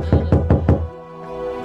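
Four firm knocks on a front door by a delivery driver bringing dinner, in a quick, even rhythm and fairly loud, followed by a faint tonal hum as the knocking stops.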